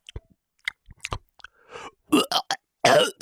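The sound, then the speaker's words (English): A person pretending to be sick lets out a few short, wet, throaty coughs, the last one longer and harsher, after some quiet mouth clicks and breathy noises. “And I want you, let me hear a cough.”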